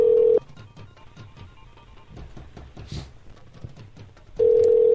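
A phone line rings while waiting for someone to answer: two loud, steady ringback tones about four seconds apart, with faint clattering room noise in the quiet gap between them.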